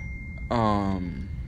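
A phone alert sounds: a thin, steady high beep for half a second, then a louder, buzzy electronic tone with a flat pitch that cuts off abruptly, over low background noise.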